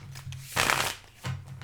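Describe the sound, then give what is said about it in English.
A deck of cards is riffle-shuffled in one quick, crisp burst of rapid flutter lasting under a second, over a low steady hum, with no talking. “Man, so, you got that shuffle down to a science.”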